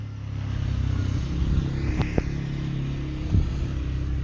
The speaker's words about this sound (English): Oh, there's a car. 1 second.